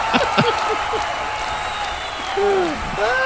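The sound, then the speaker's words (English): A large stadium crowd applauds in a steady, continuous roar, with scattered whoops and cheering voices rising above the clapping throughout. “A stadium applause, not just any kind of applause.”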